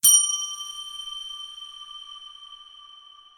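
A single bell strike rings out clearly, its bright metallic tone sustaining and slowly fading over a few seconds, alone with no voices.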